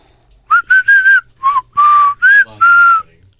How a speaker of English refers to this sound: Looking at Aztec whistles again.